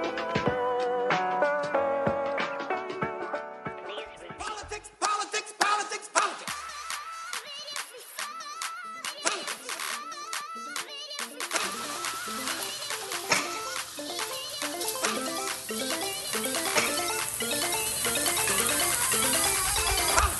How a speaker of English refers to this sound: The noise you hear, friends, is the rain, the South Florida rain.